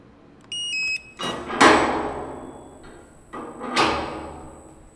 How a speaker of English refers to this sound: As you can hear, we have to pass through a number of different types of security door.